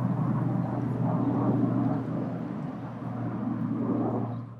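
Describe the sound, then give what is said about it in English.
A steady, rumbling drone of an airplane flying overhead, fairly loud and continuous, swelling slightly and easing off toward the end, with no voices. “Is there a boy on this plane?”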